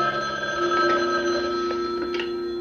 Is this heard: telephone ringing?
yes